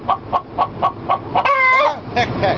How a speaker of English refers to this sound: It's the fucking chicken is all loud.